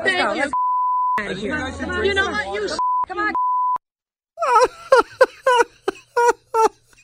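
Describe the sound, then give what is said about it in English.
Two steady, flat censor bleeps cut in between bursts of excited talking, blanking out swear words; afterward a voice continues in short choppy bursts that sound like laughter or sobbing. “I swear, the beeps make it better than the unbeeped version, just because you can't hardly hear half of what they're saying.”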